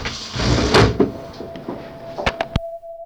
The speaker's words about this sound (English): Do you want to open the window? Yeah, this is getting a little stuffy, yeah.